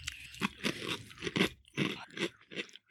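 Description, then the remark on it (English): Loud crunching of a crispy snack mix with cheese, peanuts and celery salt being chewed, with repeated bursts of crackling bites in a steady, uneven rhythm and no talking. “It's pretty good for mindless munching.”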